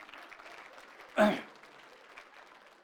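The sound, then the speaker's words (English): A church audience gives a clap offering to the Lord, clapping together in a soft, dense patter of many hands, with one brief louder swell partway through before the applause settles back to a steady, quieter rattle. “Let's give the Lord a clap offering for good parents.”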